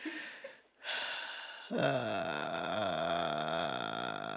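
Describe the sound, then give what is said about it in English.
A person imitates the noisy breathing someone makes while lying in bed going to sleep: a breathy exhale and a quick inhale, then a long, steady, buzzing voiced breath that wavers slightly in pitch. “he starts doing this like noise where I hear every inhale and every exhale”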